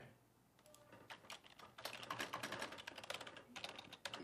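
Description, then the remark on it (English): Rapid typing on a computer keyboard, typing something into Twitter: a dense stream of sharp clicky keystrokes that starts sparse and quickly builds into loud, continuous clatter with no one talking. “you can actually share with the audience what it sounds like when you type on your own keyboard.”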